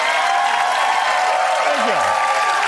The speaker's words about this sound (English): Thank you for clapping for that, man.